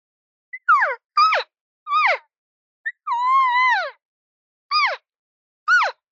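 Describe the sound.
A series of high, nasal elk cow mews, a social sound: about six short calls that dip in pitch, plus one longer, wavering call in the middle, with clear gaps between them and no talking.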